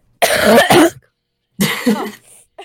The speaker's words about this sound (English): Are you, like, getting close to your microphone when you're coughing?